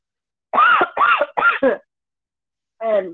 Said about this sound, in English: Sorry, I've got a cough.